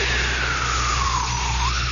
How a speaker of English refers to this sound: Another jet goes by.